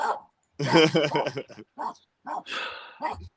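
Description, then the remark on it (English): A dog barks in a few short, loud bursts with brief pauses between them, while a person's voice mixes in among the barks. “Unless the dog's barking.”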